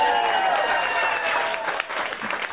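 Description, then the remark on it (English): An audience at a gig breaks into a round of applause in answer to who is from anywhere other than Danbury, a dense, steady wash of many hands clapping at once, fairly loud and sustained throughout before thinning slightly toward the end. “By round of applause, how many people are from, let's say, anywhere else?”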